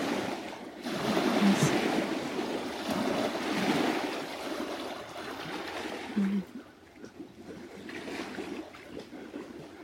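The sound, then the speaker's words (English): Ocean waves wash in steadily with a broad, hissing roar that swells and recedes, continuous, with a faint low rumble underneath and no voices. “Just feeling into the sound current of the waves.”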